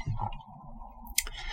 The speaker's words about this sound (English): Bit of radio magic here. If you hear a click, that's me clicking the mouse to have a look at a page.